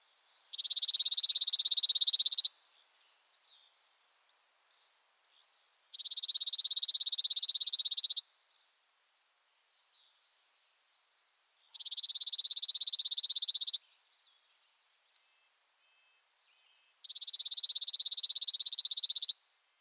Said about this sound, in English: Okay, bird number one was the chipping sparrow song. Here it is one more time. Chipping sparrows sing a long, dry trill of evenly spaced, mechanical-sounding